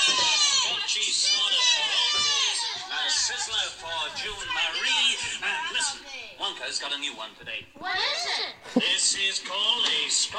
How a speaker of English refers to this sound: A long ass intro of kids just yelling.